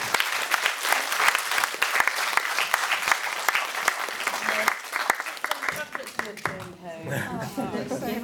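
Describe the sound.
An audience at a panel discussion breaks into a sustained round of applause, dense overlapping claps holding steady for several seconds before thinning out as a few voices begin to talk at the end.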